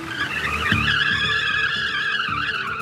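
Car tires squeal loudly and continuously for a few seconds, a high, wavering screech over a low, pulsing engine rumble as a car accelerates hard away from a grocery store parking lot. No one speaks.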